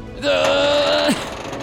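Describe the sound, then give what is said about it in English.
A door mechanism grinds open with one loud, sustained squealing creak lasting about a second, ending in a short downward groan, then a quiet room tone. No one speaks. “Want to help me open this door”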